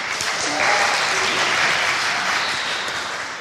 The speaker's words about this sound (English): A little bit of cheering in that one, I thought I heard as well. Could be ringing in my ears, I'm not sure.